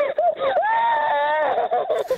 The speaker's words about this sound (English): I can't handle children crying.